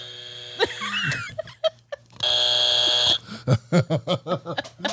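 A loud, harsh buzzer blares steadily for about a second, preceded by brief squeaky effects and followed by a quick run of rhythmic chuckling laughter.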